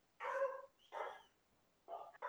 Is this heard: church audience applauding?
no